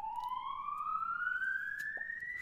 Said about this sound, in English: We gotta take a break. All right, sorry about that, guys. We'll get back into this. Fire alarm just stopped. It was interrupted my flow.